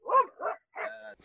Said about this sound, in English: The dog barking, you have to blame on a source of mine named Mike